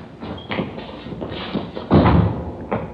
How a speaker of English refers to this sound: Here, I'll get the door.